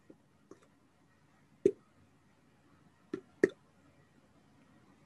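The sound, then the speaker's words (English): A voice imitates water dripping in a cave: six irregular, hollow plops and clicks, a few soft and others sharper and louder, separated by quiet gaps. “Does it sound like the natural dripping of water in a cave? Yes. Okay. Excellent, excellent sound effects.”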